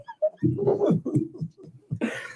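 A dog howls and whines up close in a few drawn-out, wavering cries, broken by short yelps and ending with a rough, breathy burst.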